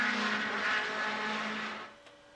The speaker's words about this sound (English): It's engine noise. Yes, but no actual John. That is engine noise from Daytona